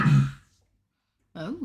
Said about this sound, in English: Well, no, I'm coughing away from the microphone rather than directly into it.